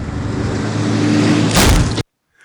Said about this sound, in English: Because I wrote that line just as she gets hit by the truck.